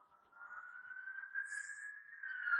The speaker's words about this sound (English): I'm quiet listening to the sirens from someone's house. I was just going to say, I think that's so fitting that the sirens come when we're talking about giving the kids control.